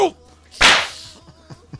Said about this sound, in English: I just got the shit slapped out of me by Will Smith.